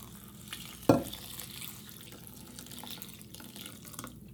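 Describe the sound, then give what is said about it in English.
About 3 tablespoons of kombucha, used as an acid, pour steadily into a bowl of oats, a soft continuous splashing trickle with a brief louder clink near the start, with no one talking. “And I'm going to pour this over first so that when I add the water, the water will help distribute the kombucha through the oats and I don't have to stir at all.”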